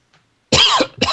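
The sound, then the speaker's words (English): Two loud, harsh coughs, a longer rasping one followed quickly by a shorter second burst, after a brief moment of near silence. “With one last cough”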